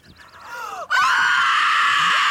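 Women scream shrilly, starting with short wavering cries that swell before bursting into a loud, sustained, piercing scream that holds steady until the end, overpowering.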